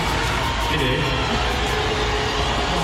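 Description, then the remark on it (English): A large audience cheers and boos at once as Elon Musk is brought on stage at a Dave Chappelle show, a loud, unbroken wall of crowd noise that holds steady for about three seconds with no single voice standing out. “There was a ton of booing.”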